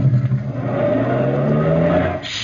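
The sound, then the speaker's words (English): A truck engine is started in gear and revs up steadily, its low rumble climbing in pitch as it accelerates, loud, with no voices. “You'll step in front of the truck to unlatch the door, start your motor in gear, and duck”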